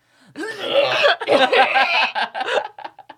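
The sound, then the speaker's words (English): A person uses their voice to imitate the harsh, hacking cough of someone with TB, a loud, raspy burst of repeated rough coughs lasting a few seconds, trailing off into short choppy hacks at the end. “It's probably like a hacking cough.”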